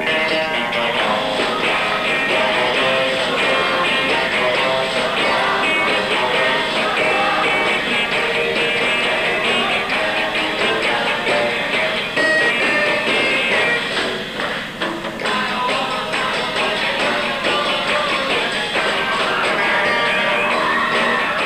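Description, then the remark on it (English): A crowd of girls screams in high, shrill voices over a loud live band, the shrieking steady and unbroken across the middle eight of the song. “And then you can hear the gals screaming during the middle eight.”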